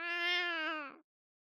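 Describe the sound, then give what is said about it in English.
A single drawn-out cat meow, steady and tonal for about a second before it trails off into silence. Clear, with no voices or other sounds around it. “a cat, which genuinely had its own apartment in Trump Tower.”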